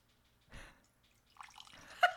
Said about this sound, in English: I'm gonna pour more wine.